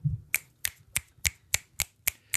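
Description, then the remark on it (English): A steady run of eight crisp finger snaps, evenly spaced about three per second, each one sharp and bright, with no talking. “But that I'm snapping and clapping because it's that easy, folks.”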